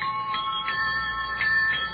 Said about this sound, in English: And of course, so no one guesses it's a jet bicycle, we have installed an ordinary bicycle bell.